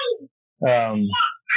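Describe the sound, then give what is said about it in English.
A young girl yells at a cat in a loud, sustained, high-pitched shout lasting about half a second, followed by a shorter cry. Brief bits of voice come before and after it. “Yeah, my daughter's yelling at the cat.”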